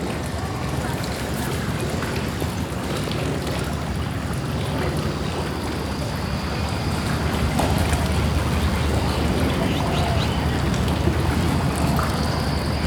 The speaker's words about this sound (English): I can hear various sounds of nature in this place, such as the sound of river lapping the bank, the sound of birds and seagull chirping, and even the sound of a passing ship.